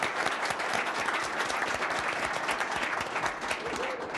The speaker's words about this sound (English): So let's give a round of applause to Mr. Perry.